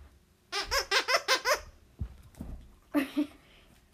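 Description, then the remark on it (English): A dog squeaks a squeaky toy: a quick run of five or six loud, high, wheezy squeaks, a pause with soft thumps, then two more squeaks. “Yeah, he's squeaking the toy.”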